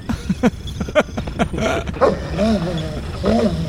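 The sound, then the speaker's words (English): A dog lets out a quick run of loud, sharp barks, then shifts into longer, wavering growls and whiny vocalizations. “Why does the dog do this?”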